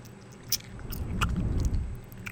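Close-up chewing of a snack right at the microphone, with a few sharp crunching bites and moist mouth sounds over a low rumble, no voices.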